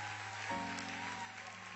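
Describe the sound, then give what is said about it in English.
A church audience claps their hands in praise to God, a steady, dense wash of applause, with a low sustained organ-like tone humming underneath. “Clap your hands and give God the best praise you've given him all day long.”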